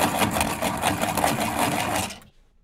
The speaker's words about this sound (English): I'm from the era of actually having to write your essays in class with number two pencil. When every time somebody got up to sharpen their pencil, it broke your concentration. Y'all remember that? That great sharpener hanging off the wall.